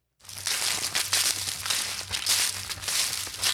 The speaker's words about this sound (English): That sound, you know, fall is here now when you hear those leaves crunch.